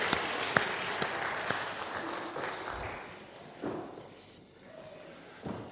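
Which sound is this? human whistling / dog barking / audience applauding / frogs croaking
audience applauding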